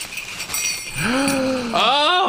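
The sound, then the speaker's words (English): Small Poochie Bells, dog potty bells on a rainbow ribbon made to hang on a doorknob, jingle in a bright, steady shimmer, with a voice joining partway through and sliding up and down in pitch over the ringing. “Now, they're called Poochie Bells. And what they are, That's great. You hang them on the doorknob, and they come in different patterns.”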